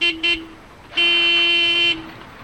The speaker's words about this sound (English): This is a noisy place. Cars and trucks honk their horns under the viaduct, and men are yelling about money at a bar next door.